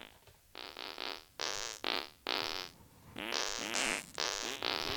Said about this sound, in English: All right, well, I'm gonna fart me out the door.